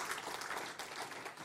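An audience gives the Lord a hand clap at a church service, a dense, steady wash of many overlapping claps with no distinct rhythm, holding at an even, fairly loud level throughout without any voices.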